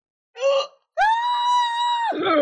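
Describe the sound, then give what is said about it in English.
A voice imitates a woman shrieking in recognition: a short sharp gasp, then a loud, high-pitched sustained scream held for about a second before breaking off with a rough, falling tail. “She shrieks.”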